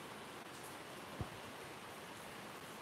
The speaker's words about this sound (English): Boy, that is really raining out there. That's like Florida rain. Goodness.